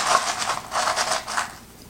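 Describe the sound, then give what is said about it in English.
Crinkly plastic rustling as a packet is pulled out of a cup, coming in several quick, papery bursts that fade toward the end. No one speaks. “Open it up, see what's inside. Take this packet out.”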